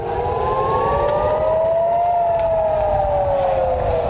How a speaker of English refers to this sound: In Israel, air raid sirens are as familiar to children as the lunch bell.